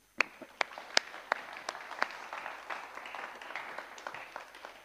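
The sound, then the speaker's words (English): A church audience breaks into applause, starting with a few sharp individual claps that quickly swell into steady, dense clapping from many hands, sustained at moderate loudness with no talking. “That's got to be worth a clap, hasn't it?”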